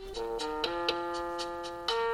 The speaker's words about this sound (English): Maybe it's been a tough day. A little blues. Really tough day, blues trumpet.